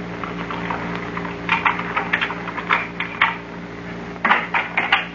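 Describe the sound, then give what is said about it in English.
Footsteps outside a house tap in short uneven clusters of sharp clicks over a steady low electrical hum, with no voices; the steps grow a little louder toward the end. “But I heard footsteps outside the house.”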